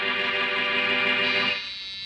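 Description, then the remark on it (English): The doorbell of Boston Blackie's apartment rings with a loud, buzzy, sustained tone full of bright harmonics, holding steady for about a second and a half before dropping off into a fading ring. No voices are heard. “The doorbell rings.”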